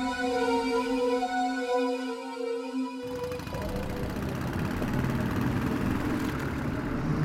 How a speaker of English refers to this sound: I always hated that motorcycle. But now, hearing it behind Sheriff Jeffrey's car, it sounded like sweet classical music.